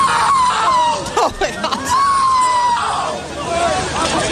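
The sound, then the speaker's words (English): A man lets out long, strained screams and wails over the loud murmur of a crowd as he is escorted out of a venue, his voice rising and breaking in several drawn-out bursts. “Listen to this man scream.”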